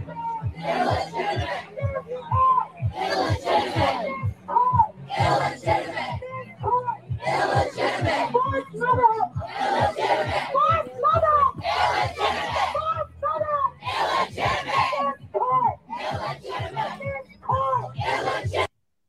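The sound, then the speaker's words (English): A large protest crowd chants and shouts in steady, rhythmic bursts, voices swelling together repeatedly with loud, dense energy throughout, like a rally in full cry. “And yeah, his video of the crowd.”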